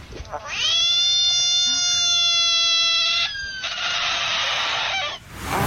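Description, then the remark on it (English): A frog screams with its mouth wide open as a dog playfully approaches and tries to lick its back, a loud, sustained high-pitched wail lasting a few seconds before turning into a harsher, raspy cry, with no talking. “The dog playfully approaches it and tries to lick its back, and the frog is freaking out, and this is the sound that it lets out with its mouth wide open.”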